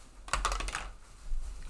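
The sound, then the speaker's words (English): Dice rolled for a Wisdom saving throw clatter across a hard tabletop in a quick burst of sharp clicks lasting about half a second, fairly quiet, landing on 12, followed by faint room noise with no one speaking. “Stop rolling that dice.”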